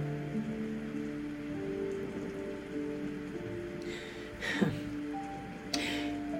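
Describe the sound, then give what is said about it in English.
Heavy rain pours steadily and continuously, with a couple of brief louder splashing bursts near the end, layered over sustained low musical tones. No one speaks. “Well, beloved, during those days of Noah before the flood, those that would not listen to him and hear the warning of Yahuwah, our righteous Heavenly Father, were also waiting for the rain to stop. But it never did.”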